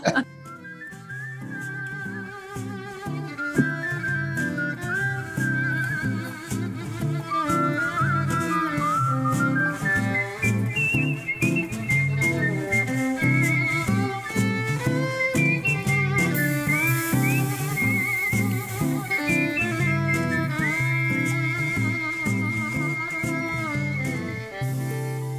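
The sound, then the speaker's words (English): A person whistles a bright, wandering melody over a full jazz band backing, the whistled line steady and prominent throughout, with no talking. “Harder to whistle like that and sing, or is it?”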